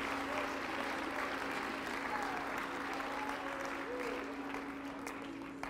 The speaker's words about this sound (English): Come on, somebody give the Lord one more hand clap of praise in this house. Would you do that? Amen.